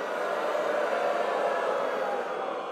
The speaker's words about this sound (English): Oh, okay, I agree with booing, but I can't say the joke when you're booing.